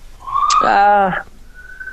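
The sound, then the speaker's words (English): A siren wails loudly with a rich, buzzy tone, holding its pitch before dipping and cutting off, then a thinner high tone lingers faintly. No one speaks. “I can hear them coming to get you in the background. The siren.”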